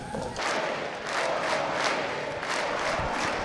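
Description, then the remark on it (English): A large crowd at CPAC 2020 cheers and chants "four more years" for President Trump in unison, a loud, steady roar of voices rising in regular rhythmic pulses, with no single voice standing out. “The crowd is cheering 4 more years.”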